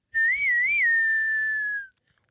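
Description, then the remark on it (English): A single clear, loud whistled tone, wavering up and down twice before gliding slowly downward and fading out, in the style of an Old West whistle. “That was a great Old West whistle.”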